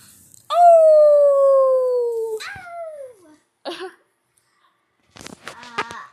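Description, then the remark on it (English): A person howls like a dog: one long, loud wail that slides downward and trails off, followed by a few short, scattered vocal bursts. “Okay, they probably don't want to hear us howl.”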